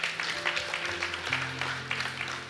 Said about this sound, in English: Yeah, go ahead and clap. That's all right.